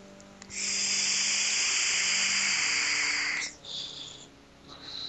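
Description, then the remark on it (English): A long, steady breathy hiss of a vape exhale of custard-flavoured liquid lasts about three seconds, then two shorter, softer airy puffs follow. No one speaks. “That's just regular vaping.”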